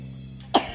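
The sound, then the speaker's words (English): A single sharp cough bursts out after a quiet moment, followed by a smaller short rasp, with no talking around it; it is the cough of Walter, a car whose motor had thrown a rod. “Is that how Walter was coughing?”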